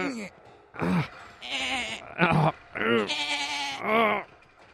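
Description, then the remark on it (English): A person imitates a sheep with a string of about six loud, quavering bleats separated by short pauses. “Aren't you supposed to be making sheep noises?”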